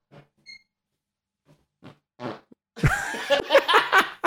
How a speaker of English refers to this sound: Hey, I'm gonna fart. The English is kicking in. I want you guys to hear one of my farts. I'm not gonna fart on the mic though.